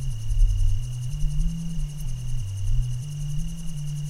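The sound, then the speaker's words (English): Insects chirp in a forest of towering, skinny trees beside the highway near Tioga Pass, a steady, rapid pulsing trill alongside a constant high whine, while a low droning hum shifts between pitches underneath. No one speaks. “I randomly pulled off the highway here in the vicinity of the Tioga Pass around these towering but skinny trees, insects and whatnot.”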